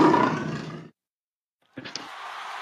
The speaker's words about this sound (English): Wow, the lion showed up for that one,